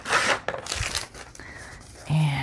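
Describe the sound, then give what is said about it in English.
Avocado-dyed paper being folded down: dry, crisp rustles and crinkles come in a few quick bursts, loudest at the start, then ease into a softer shuffle before a low steady hum rises at the end. “So we're just gonna fold this guy down.”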